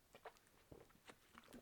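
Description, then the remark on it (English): Quiet mouth sounds of someone sipping ginger ale: a few short wet clicks and gulps in an uneven rhythm, with no talking. “Just taking a little refreshing sip of some ginger ale.”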